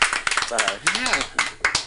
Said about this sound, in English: Let's have a nice round of applause for Mercedes Monroe